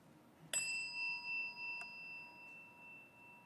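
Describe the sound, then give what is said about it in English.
A meditation chime is struck once and rings out with a clear, sustained metallic tone that slowly fades, with a soft second tap partway through the long decay. “we ring this chime in solidarity with people around the world”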